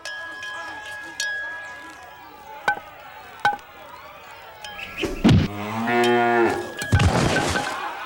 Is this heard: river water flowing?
no